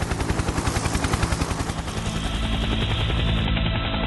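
A loud helicopter with fast, rhythmic rotor thumping that blends into a steady heavy rumble, without any voices, from the trailer for John Carpenter's 1981 film Escape from New York.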